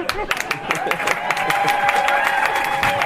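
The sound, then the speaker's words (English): An audience applauds an audience volunteer, with many hands clapping in a dense, steady patter that builds slightly and holds for a few seconds, mixed with some voices and cheering from the crowd. “A round of applause for our wonderful audience volunteer.”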